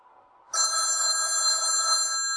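household object, telephone ringing

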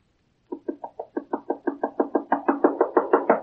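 impact, knocking on a door

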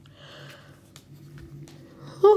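human body sound, yawn

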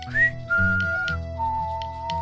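sound effect, whistling

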